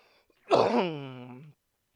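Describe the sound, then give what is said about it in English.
A single harsh cough bursts out and trails into a hoarse, voiced groan that slides down in pitch for about a second before stopping, with silence around it. “Still having this nasty cough.”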